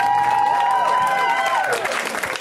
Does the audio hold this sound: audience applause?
yes